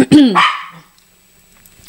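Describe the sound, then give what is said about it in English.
A female dog gives a sharp bark that rises and falls in pitch, with a second quick yelp folded into it, then goes quiet with only faint background noise afterward. “She is a dog. I have a dog.”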